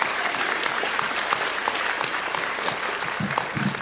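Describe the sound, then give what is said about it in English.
An audience claps together in a steady, dense wash of applause that holds at a fairly even loudness for several seconds, with no voices standing out. The audience claps to show they use video calls on Teams, Zoom and similar. “How many of you, by clap of hands, use video calls on Teams, Zoom, other things?”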